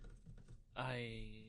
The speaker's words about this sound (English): And you're my secretary, dude. Yeah, you're like typing shit away.